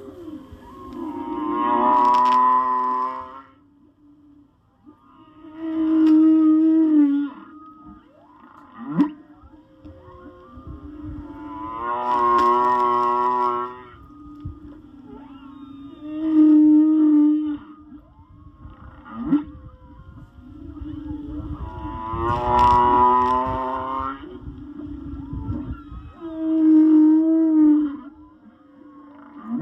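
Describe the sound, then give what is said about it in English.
A humpback whale sings a repeating theme of long moaning, harmonic calls and lower grunts, loud and clear, close to a boat and heard through the boat, with phrases recurring every few seconds over a deep underwater rumble. “I got one of the themes from the day that that singer was being really, it was really clear and he was close to the boat”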